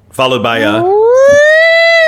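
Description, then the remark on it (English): A voice mimics a siren, starting with a few choppy, wavering tones and then sliding into a long, loud, steadily rising wail with rich harmonics. No words are spoken. “Followed by a siren.”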